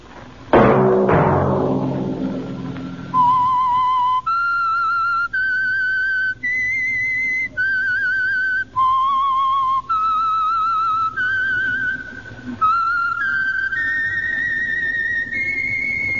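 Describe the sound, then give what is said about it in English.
A loud burst of instrumental sound fades, then a clear whistle carries a slow tune of about ten sustained notes, each separated by brief breaths, with no voices; the whistled theme of the Signal Oil Company's radio program The Whistler. “Whistle be your signal for the Signal Oil program, The Whistler, each Sunday night at this same time.”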